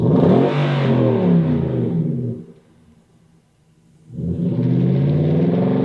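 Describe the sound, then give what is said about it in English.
A 2016–2020 Nissan Titan truck with a 5.6-liter Endurance V8 and a Borla cat-back exhaust system revs hard twice: a loud, deep, rumbling burst, a drop to a low idle burble, then another loud rising rev. No one speaks. “That is... the Borla 2016 to 2020 Nissan Titan Cat-Back Exhaust System.”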